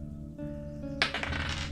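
A six-sided die clatters and rattles across a hard table in a short, close burst of clicks, over a steady low musical hum in the background.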